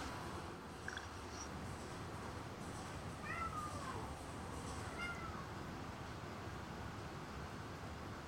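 A cat meows a couple of times, short, thin cries rising and falling, set against a steady hiss of background noise, with no one talking.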